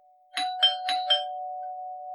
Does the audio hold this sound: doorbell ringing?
yes